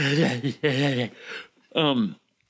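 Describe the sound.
A loud, drawn-out vocal yawn, voiced in a few sliding, moaning bursts with short pauses between them.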